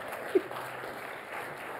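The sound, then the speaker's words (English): Steady applause from an audience, a dense wash of many hands clapping at an even moderate level for the whole stretch, with one brief louder clap standing out early on. “So once you come and sit where this microphone is, you could calm him with a little clapping.”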